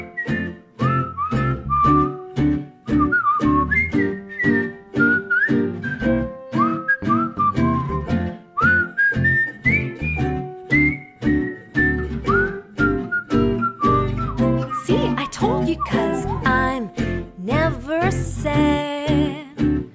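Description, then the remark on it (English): Someone whistles a bright, wandering melody with sliding pitches, clear, over a steady rhythmic instrumental backing with a strong beat throughout. “He likes classic rock and he's good at whistling.”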